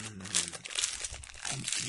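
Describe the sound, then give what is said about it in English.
Crackly crinkling of a chocolate biscuit wrapper rustled for ASMR, a busy run of sharp plastic rustles and crackles filling the short moment with no talking. “Stop rustling it on. Oh no, that's horrible! It's in my ears!”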